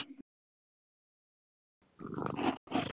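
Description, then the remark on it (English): A cat nuzzles against a microphone, making loud, scratchy rubbing bursts after a brief bump and a long stretch of silence. “I'm getting a weird sound on your end. Yeah, my cat found the microphone.”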